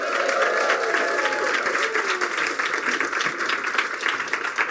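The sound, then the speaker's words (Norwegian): An audience in a hall, men and women, applauds steadily with dense, continuous clapping and some cheering mixed in, welcoming women called up by name, sustained at an even, loud level throughout. “La oss hylle dem med høy røst.”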